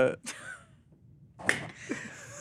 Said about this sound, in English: For anyone listening to the audio podcast, if you've been hearing some clapping noises,